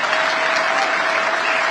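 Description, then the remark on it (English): A crowd applauds at a political speech about gun violence, many hands clapping in a dense, continuous wash of sound that holds a fairly loud, even level throughout, with no voices standing out. “Where are they running their mouths with these dumb liberals applauding?”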